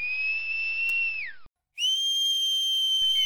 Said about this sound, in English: She whistled. All whistled.